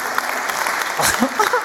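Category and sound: crowd, audience round of applause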